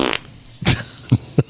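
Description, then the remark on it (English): A fart sounds in three short, punchy bursts, a longer one followed by two quick sputters, after a brief hiss at the start. “Perfectly timed fart there.”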